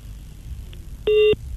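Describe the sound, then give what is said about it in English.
A phone line cuts out, leaving loud, steady electronic tone beeps, one long pulse followed by the start of another, over a low background hum with no talking. “Oh, the line keeps dropping.”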